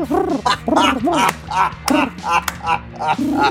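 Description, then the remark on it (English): A person imitates a pigeon's cooing with a rapid string of warbling, throaty calls, fairly loud, over a faint steady low hum. “That is a pigeon, right? That's a pigeon sound? They coo.”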